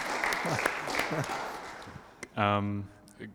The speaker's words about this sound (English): Round of applause for the first question. It's fantastic.